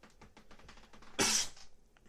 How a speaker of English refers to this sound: Excuse me if you guys heard that sneeze. Excuse me.